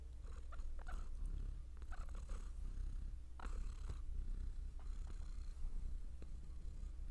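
cat purring

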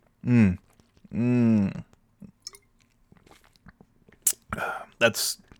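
drinking water

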